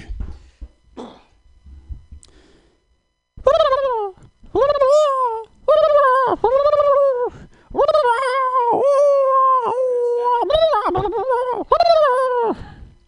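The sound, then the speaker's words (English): A person's voice mimics a wolf howling in a series of long, rising and wavering howls, loud, after a few seconds of quiet shuffling and soft breathy noises. “I will do these animal impressions under the stipulation that if you think you know the animal, guess.”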